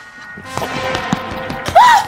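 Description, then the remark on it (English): Light, soft taps patter at uneven intervals, like small quick footsteps, over a low hum, then a brief high warbling squeak rises and falls at the end. “Did you hear that? Hear what? It was like little footsteps.”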